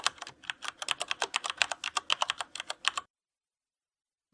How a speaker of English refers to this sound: So just as a point of clarity, when we're talking about keyboards, we are talking about the things that you type on. So we're talking about this.